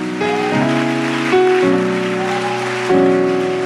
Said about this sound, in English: Let's continue to clap our hands unto the Lord and give Him praise tonight. Let's just continue this beautiful atmosphere of worship.